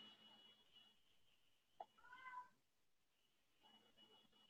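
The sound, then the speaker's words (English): A single drawn-out meow from a pet cat crying outside a room, rising and wavering in pitch, preceded by a sharp click and surrounded by faint background hum. “My cat is, like, crying outside of my room now.”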